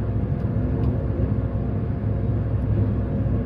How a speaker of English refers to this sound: Ooh, there's noise. This is quite loud. We're in a train. But what are we seeing? What are we seeing? This is very loud. Sorry to everyone who's currently being deafened.